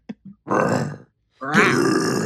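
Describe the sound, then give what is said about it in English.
A person imitates a lion's roar: a couple of short grunts, then two long, loud, raspy growling bursts from the throat, each lasting about half a second to a second. “Okay, it didn't sound quite like that.”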